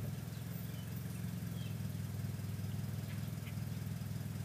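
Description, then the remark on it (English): A car that has just pulled up in a park idles close by, a steady low rumble with a faint rhythmic throb that holds constant throughout, with no talking over it. “Wasn't noisy until this fucking car pulled up over here.”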